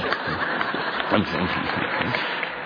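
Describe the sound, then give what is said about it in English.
An audience claps in a dense, steady patter that holds at an even loudness for a few seconds, with faint chuckles and murmuring mixed into the applause. “No, don't clap unless you mean it. No gratuitous clapping.”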